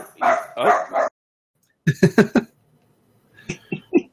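small dog barking

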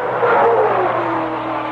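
high-performance car engine revving

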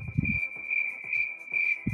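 crickets chirping

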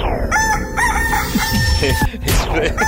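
rooster crowing sound effect

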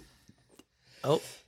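sneeze

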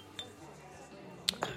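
glasses clinking

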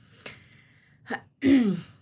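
throat clearing

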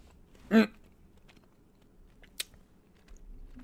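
chewing a jelly bean

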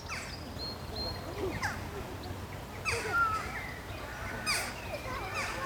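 birds singing

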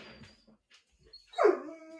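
puppy barking

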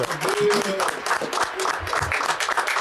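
audience applause

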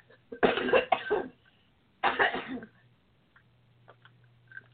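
coughing

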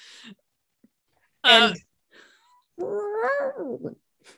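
cat yowling

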